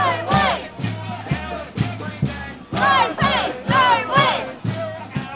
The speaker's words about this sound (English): The crowd then marched its way along the banks of the Yarra River, the full length of the casino. There were drummers, whistles, and a palpable anger at the gaming giant's refusal to offer decent pay and conditions.